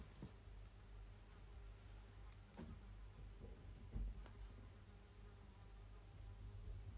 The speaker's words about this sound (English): I can still hear the fly. Fuck me, the fly's in the bedroom. Right, hold on a sec. I'm standing up to let this fly out. I can't record with a fly buzzing round. Come on, fly.